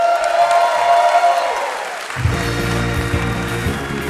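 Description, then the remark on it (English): A theater audience at a live comedy show at the Alberta Rose Theater in Portland, Oregon applauds and cheers in a dense, steady wash of clapping and whoops, with low music swelling in beneath the crowd partway through. “That was Marcella Arguello, recorded in front of a live crowd at the Alberta Rose Theater last month in Portland, Oregon.”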